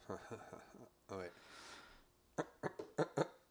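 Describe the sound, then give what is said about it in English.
A person makes some wordless vocal sounds, then clears their throat in a quick series of five or six short, harsh bursts. “That was just me clearing my throat, but it sounded like our laughs.”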